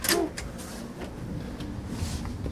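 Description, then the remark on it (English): A heavy door on a ship opens with a short scraping clunk right at the start as someone heads out to the deck, then a steady low rumble of machinery or wind continues in the background. “That's the first door.”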